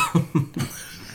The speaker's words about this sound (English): over here coughing up a lung, about to die.